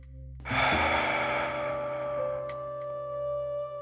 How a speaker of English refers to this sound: All right, family, let's get in sync by taking three deep breaths together. Pushing all the air out of your lungs.